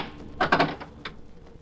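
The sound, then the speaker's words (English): A door being opened: a quick burst of wooden clunks and rattling from the latch and handle, then a single softer click a moment later. No one speaks. “I must open it to show you.”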